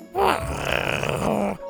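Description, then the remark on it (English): A single deep, rumbling growl from Scoot, a dinosaur who rolls over and growls back at another dinosaur, Buck; fairly loud, drawn out for about a second and a half with a rough, groaning texture before cutting off. “Scoot rolled over and growled back at him.”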